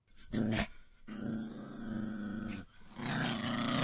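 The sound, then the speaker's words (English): A Rottweiler growls loudly, a deep sustained rumble broken into a few long, menacing bursts, with no one speaking. “Oh, he doesn't sound very happy.”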